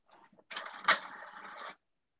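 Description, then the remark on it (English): A printer whirs into action for about a second, a steady mechanical hum with a sharp click partway through, then stops abruptly. Moderately loud, with no one speaking. “named her printer Steve, and he might be going off during the episode”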